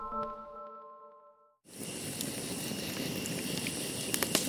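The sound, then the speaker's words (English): A sustained tonal hum fades out, then a roaring campfire abruptly takes over: dense, steady crackling with a few sharp pops toward the end, and no voices. “Pull up a seat right next to this roaring fire we have here at Snap Judgment's Campfire Tales, the Primal episode.”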